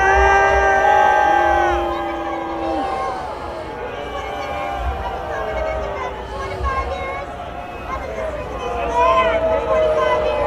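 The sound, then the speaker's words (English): A large crowd boos Attorney General Dana Nessel off the stage, loud and steady, long low drawn-out voices overlapping into a continuous jeering roar that swells and dips throughout. “as they were booing her”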